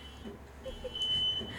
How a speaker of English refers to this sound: Somebody fan the alarm. Sound the alarm. No, fan. Fan the alarm.